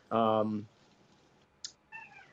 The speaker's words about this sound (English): And, you know, hey, relax. Sorry, I got some cats and dogs here.